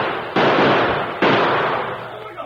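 Heavy gunfire bombardment: two sudden, loud blasts about a second apart, each rolling into a sustained, crackling roar that slowly fades, with no voices.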